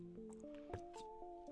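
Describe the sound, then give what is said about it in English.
Water pours into a glass, a trickling, gurgling stream whose tone climbs steadily in pitch as the vessel fills. It's quiet, with no voices. “Let's get our water here while we're talking about why you need to drink more water.”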